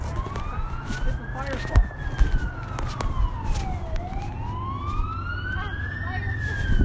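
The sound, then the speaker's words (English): A fire truck siren wails steadily, sliding slowly down and then climbing back up in pitch, clear over a low rumble of road traffic. “Fire.”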